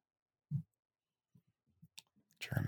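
Scattered soft clicks and taps of people typing, Googling and texting on phones or keyboards sound irregularly, ending as a louder burst of noise comes in.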